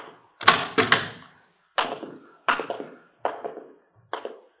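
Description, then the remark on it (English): The door of a patient's room in a hospital being opened, with a run of six or so sharp wooden knocks and rattles coming in uneven bursts, loud and clear with no voices. “Now, this is his room. You want to open the door?”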